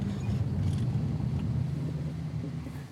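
A steady, deep rumble of a car driving along wide town streets in Paso Robles, with constant road and engine noise and no voices.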